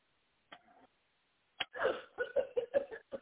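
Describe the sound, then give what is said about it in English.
A woman, told to take a deep breath and cough, gives a brief gasping inhale, then a sudden sharp cough followed by a rapid run of harsh, voiced coughs, fairly loud, with no talking. “He says, take a deep breath and cough.”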